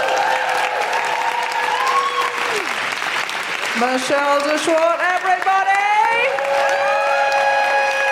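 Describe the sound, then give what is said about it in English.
Steady, dense applause from a comedy show audience for comedian Sarah Keyworth runs loud through the whole stretch, while a man's voice speaks briefly over it and a bright melodic tune plays along underneath. “Keep that applause going for the incredible Sarah Keyworth.”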